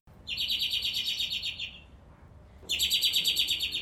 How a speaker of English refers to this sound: So that's the robin.